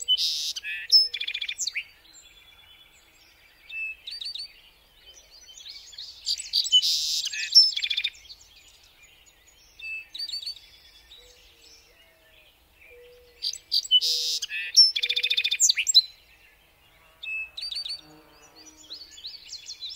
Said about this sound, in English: Your alarm clock sounds its sparrow call, and a sparrow crashes into your window.